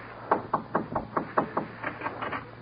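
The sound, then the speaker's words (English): A series of about ten sharp knocks on a door, rapped in a steady rhythm, then a quicker pair of raps near the end, with no voices. “Go in there and knock on the door.”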